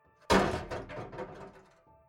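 A single heavy, booming impact as a police sergeant kicks in a bedroom door, loud, followed by a brief rattling decay of wood and debris settling.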